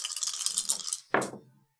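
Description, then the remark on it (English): Dice rattle and clatter for about a second, a bright rolling jumble of clicks, then a single sharp knock as they land and tumble briefly before settling into silence. “The dice are... are right here.”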